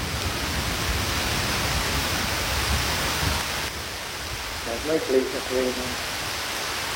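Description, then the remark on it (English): Steady, dense rain falls outside, hissing continuously, loud in the first half and slightly softer after, with a brief murmur of voices rising faintly beneath it near the end. “It's raining outside right now.”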